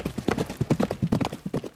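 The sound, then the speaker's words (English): Hooves of a horse named Achilles clip-clop in a quick, steady rhythm, a rapid run of sharp, fairly loud knocks, with no one speaking. “My horse!”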